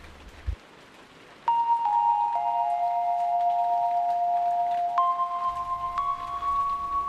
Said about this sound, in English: It was raining yet again in Los Angeles. You know, for the love of God, I can't figure out how a place that's known so well for its desert climate could rain this much.